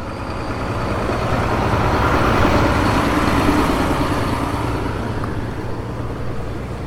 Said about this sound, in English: Oh hey, another big construction truck is going by.